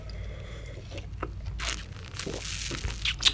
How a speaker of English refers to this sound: I'm going to taste this real quickly, though, because I have to do that. Please do. I'm sipping right now. Here we go.